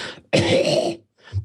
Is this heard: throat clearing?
yes